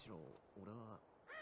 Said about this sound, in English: Oh, we hear a raven. That's the signal. That's the signal from the other team.